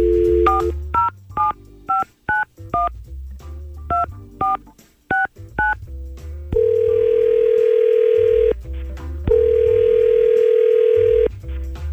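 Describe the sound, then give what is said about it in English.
A rapid string of touch-tone dialing beeps, followed by two long, steady ringback tones on a telephone line as a radio morning show places a call, with no voices. “let's try to get Allison on the phone and find out what was so weird about it”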